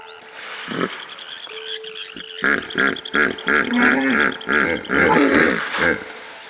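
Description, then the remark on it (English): A hippopotamus lets out a loud series of deep, rhythmic grunting honks that build into a roaring chorus, after a few scattered low calls at the start. “Cocaine hippos.”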